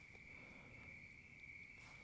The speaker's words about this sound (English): Even Wednesday himself sent me a text message. And he told me, I like the crickets. It's very ASMR-esque.